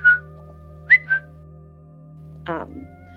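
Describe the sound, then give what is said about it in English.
Three short, sharp whistling vocal tics chirp in quick, irregular succession, followed by a rougher, buzzier vocal burst, all over a steady low background hum with no talking. “I think I picked up the whistle”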